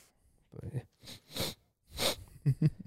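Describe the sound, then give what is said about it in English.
A voice imitates nose sniffing: several short, hissy inhales in quick, uneven succession, ending with a couple of brief voiced grunts. “It'll be like, God, I hate the way that you're sniffing from your nose right now.”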